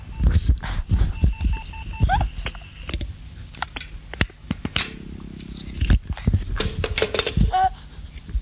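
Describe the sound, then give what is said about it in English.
Steady electronic beeps on an STD long-distance phone line, a few sustained mid-pitched tones that come and go amid a busy layer of clicks, crackles and rumbling line noise. “Oh, is that what those beeps are?”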